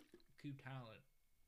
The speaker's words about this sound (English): I'm drinking water. Yeah. Okay. Just drink it right into the mic.